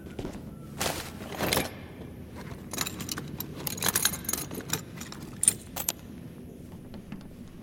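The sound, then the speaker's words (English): A door lock being picked: irregular bursts of small metallic clicks, scrapes and jingles, some sharper than others, over a steady low rumble, with no one speaking. “Explosives, assassinations, and now lockpicking.”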